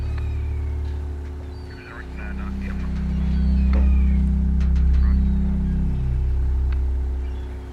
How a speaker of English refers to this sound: The boat went down a long sort of river, land on both sides, factories and docks. Bit grim. After a while, we got out into the open sea and it was much nicer, calm.